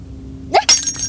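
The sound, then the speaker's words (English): A drinking glass hits the floor and shatters in one sudden, loud crash, with bright tinkling shards scattering and ringing briefly afterward. No voices are heard. “I just broke my glass.”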